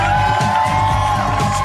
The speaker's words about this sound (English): Would you please keep those applause going and welcome to the stage the mayor of Hermantown, Dan Harmon.